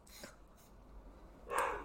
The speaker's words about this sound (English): Mostly Max, because he's the first one that starts barking and he's the one that's like, oh my God.